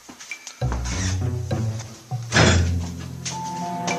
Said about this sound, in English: thumping noises against my front door.